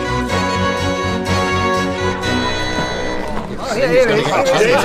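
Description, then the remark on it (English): A steady hubbub of a crowd gathered outside a print shop, many voices chattering at once in a dense, continuous babble that swells slightly toward the end, with some tonal, wavering sounds mixed in. “Oh, what a splendid crowd.”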